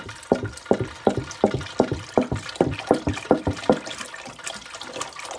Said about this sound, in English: Now, I'm gonna put my hand in to where I want my water to go to. So approximately there, 2-3 fingers down from the top, and I'm just gonna pour the water in until I feel the water get to where I want it.